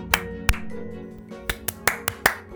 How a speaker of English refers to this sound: All right, clap.